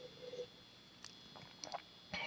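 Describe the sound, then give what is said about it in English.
A few soft, brief slurping sips of green tea, short airy bursts spaced over a couple of seconds against a quiet background with a faint low hum at the start. “Pardon as I take a sip of some green tea.”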